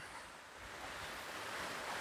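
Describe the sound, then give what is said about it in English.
A 60-foot cascading waterfall with multiple platforms, upstate along a hiking trail, roars steadily, a dense continuous hiss of rushing water that builds slightly in loudness, with no voices over it. “It's a 60-foot cascading waterfall with multiple platforms.”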